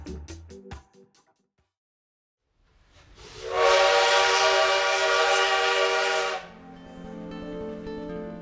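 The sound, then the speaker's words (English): A train rumbles along the rails, building from near silence into a long, loud steam whistle blast lasting a few seconds, then the steady rolling clatter carries on underneath, evoking the 1930 train journey of Diego Rivera and Frida Kahlo from Mexico City to the United States. “In the fall of 1930, newlyweds Diego Rivera and Frida Kahlo set out on a long train ride, leaving their beloved Casa Azul in Mexico City to come to the United States.”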